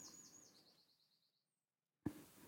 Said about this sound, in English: That's a nice bird song there. Yeah, wonderful ambience coming in.